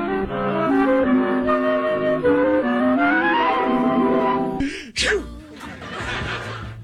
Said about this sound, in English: Poor peacock is sneezing because of my cologne.